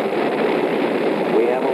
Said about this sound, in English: We have ignition sequence start. The engine's now building up to 7.7 million pounds of thrust.